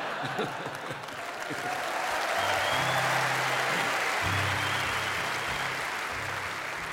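A crowd applauds steadily, the dense clapping swelling after the first second and holding loud and continuous, with some low humming tones underneath.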